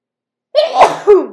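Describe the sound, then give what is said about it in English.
A single fairly loud allergy sneeze, from tree and grass pollen, muffled into an elbow. It breaks a brief silence with a quick intake, then a sharp burst and a short trailing exhale. “I sneezed into my elbow.”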